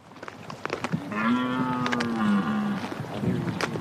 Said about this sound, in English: It's the roar, or rut, the time when stags are calling to attract the attention of hinds.